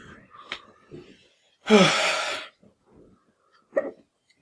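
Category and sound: human body sound, hiccups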